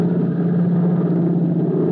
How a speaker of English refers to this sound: Only the steady drone of the plane answers Tim's question.